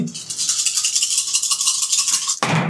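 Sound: dice being rolled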